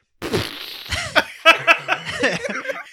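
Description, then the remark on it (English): A man's voice imitates a helicopter crashing into water with sputtering, whooshing mouth noises, quick rising and falling sweeps and a run of splashy, gurgling bursts, fairly loud. “Can you get me a helicopter from crashing into water”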